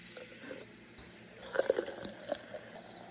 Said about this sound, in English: Now we're pouring. Container. Okay, let's do a sound bath here. We're doing some ASMR.